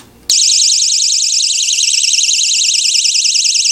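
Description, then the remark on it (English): A personal safety alarm buzzer with a large speaker, tested indoors, blares suddenly and continuously, a loud, warbling high-pitched tone that pulses rapidly and fills the whole clip after a brief quiet start. “All right, let's test the buzzer.”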